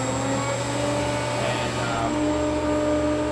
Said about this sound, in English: This is called a screw pump from Atlas Copco.